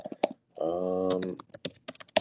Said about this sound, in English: With the typewriter? That's my iPad keyboard, sorry. Uh-huh. Yeah. It sounds like a typewriter over there.